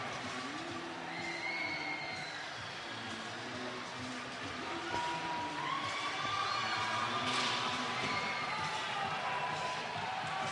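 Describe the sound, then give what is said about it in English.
A full-house capacity hockey crowd, with people all along the boards on all ends, roars continuously as LaSalle's Explorers win the 2016 Flyers Cup championship 4-1: a dense wall of cheering and shouting that swells louder in the second half, with whistles and yells cutting through. “You hear the roars of this crowd, a full house capacity crowd with people all along the boards on all ends.”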